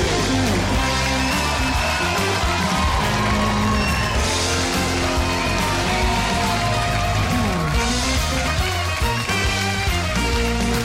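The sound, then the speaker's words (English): A theater audience cheers, whoops and yells steadily throughout as Mike Huckabee is introduced at the start of a show, mixed with loud, continuous band music that plays underneath the crowd noise the whole time. “We have a great crowd here in our theater.”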